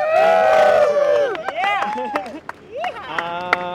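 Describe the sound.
A small group of young voices, about 30 men and a couple of women in their 20s, mostly Israeli, gathered for a no-pants tram ride, cheers and whoops together, with overlapping shouts rising and falling and a few scattered claps, fairly loud, fading to sporadic hollers.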